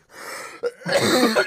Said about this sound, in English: We caught him mid-cough. No, you caught me mid. You caught me mid-bong hit